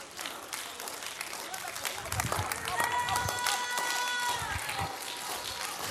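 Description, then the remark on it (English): An audience stands and claps their hands unto the Lord in a dense, lively patter that continues throughout, with raised voices and sustained vocal tones rising over the clapping in the middle. “Why don't we stand and clap our hands unto the Lord?”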